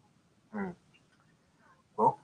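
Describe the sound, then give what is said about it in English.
A short, stifled sneeze bursts out of near silence, followed a second and a half later by another brief vocal burst at the very end. “Oh, excuse me. Bless you.”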